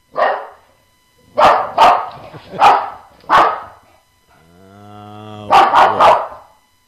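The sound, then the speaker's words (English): A medium-to-large dog barks loudly, five sharp separate barks, then a drawn-out rising whine before a quick burst of three barks in a row. No one speaks. “Here is bark number 2 on National Dog Day.”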